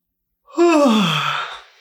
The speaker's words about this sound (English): This is as simple as taking a slow breath or yawning.